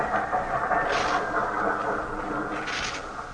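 A train rumbles steadily as it arrives at the station, a continuous mechanical roar with hissing bursts of brakes or steam rising and falling as it pulls in.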